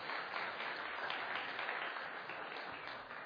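Sustained audience applause for the volunteers after children expressed their faith and presented the Christmas story that morning, a dense crackle of many hands clapping at a steady, even level throughout with no voices standing out.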